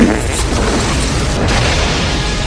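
Loud, rumbling explosions on an island roar without pause, deep booms blending into a dense, continuous blast of noise with no voices.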